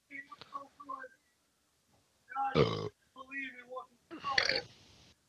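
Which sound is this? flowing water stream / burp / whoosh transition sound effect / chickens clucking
burp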